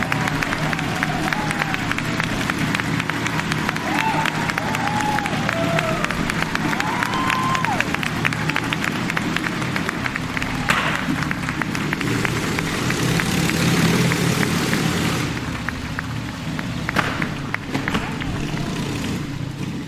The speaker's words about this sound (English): I'm now inside the Motodrome, where you can hear Donald Ganselmeyer riding the wall and thrilling the crowds with his gravity-defying antics